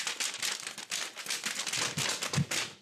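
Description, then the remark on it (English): Papers being shuffled hurriedly and forcefully by Mr. Clemens, angrily, behind his desk: a continuous stream of crisp rustling and crinkling with sharp little bursts, no voices. “Leo and Wednesday saw Mr. Clemens behind his desk, angrily shuffling papers.”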